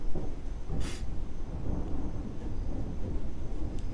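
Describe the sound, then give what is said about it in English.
A deep, continuous rumble of thunder rolls through the whole stretch, with a brief sharp crackle near the start and a soft wash of rain beneath, no voices. “It started raining with thunder and all.”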